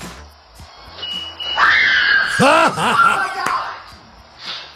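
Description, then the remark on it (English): A high-pitched shrieking scream in the distance, heard in the back of a house: a sustained shrill cry followed by three or four quick, rising-and-falling shrieks, fairly loud, with no talking over it. “it was one of those really high-pitched screams”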